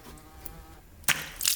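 A housefly buzzes steadily with a thin droning hum, then a sharp crack cuts in near the end, followed by a louder burst of hissy, fluttering noise.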